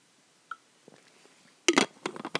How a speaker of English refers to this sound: Sip of water because I need to take a chill pill.